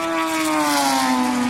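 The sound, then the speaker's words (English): An HPD prototype race car roars past at high speed at the Porsche Curves, its engine whining loudly with a steady, slightly falling pitch as it sweeps by. “That's one of the HPDs.”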